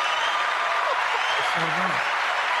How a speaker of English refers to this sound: And we got applause now.